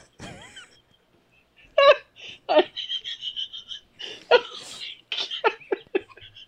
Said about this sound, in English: I had like a burp that got stuck. Well, I almost went deaf.